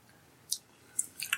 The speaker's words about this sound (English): Okay, let's try it out. Cheers. Try to breathe in when you drink it. Okay. Remember, just a little sip, coat your palate, get it ready.